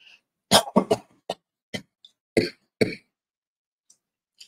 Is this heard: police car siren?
no